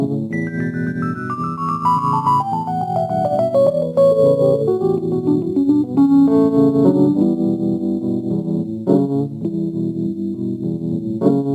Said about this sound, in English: He said, we got to put in some rain and thunder.